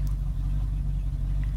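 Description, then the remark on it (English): A car engine idles while parked, a steady low rumbling hum that holds constant throughout with no revving and no voices. “What are you doing sitting in this vehicle with the engine on?”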